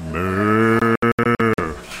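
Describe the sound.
A man imitates a cow with a long, loud, droning moo that breaks into several choppy bursts near the end, with no other sounds.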